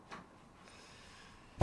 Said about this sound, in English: Right, shall I close the door?